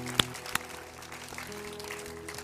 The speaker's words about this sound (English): We're so glad and honored to have you. Yes, give them. That's an appropriate time. Clap.